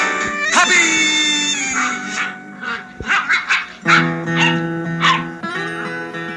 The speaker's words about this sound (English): The scene fades up to a family of old English sheepdog puppies playing and barking in a wood-paneled suburban den somewhere, with mellow guitar music in the background.